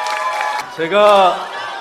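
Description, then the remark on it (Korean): A crowd claps and cheers in a steady noisy wash to welcome No Jeong-myeon, Democratic Party National Assembly candidate for Bupyeong-gap, with one voice calling out loudly over it midway before the applause carries on. “돌발 영상 뉴스 타파의 3파 노정면 인재를 큰 박수로 맞아주십시오.”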